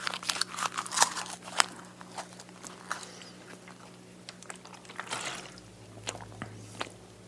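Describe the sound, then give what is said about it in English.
Wet chewing with irregular crunchy, crinkly clicks and squishes as torn book pages rolled up like a chaw of tobacco are worked between the teeth, repeating for several seconds with no talking. “I'll roll them up, you know, into almost like a chaw of tobacco, and then just start to chew.”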